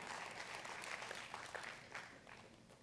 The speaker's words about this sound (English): I did not hear one masculine clap in that entire round.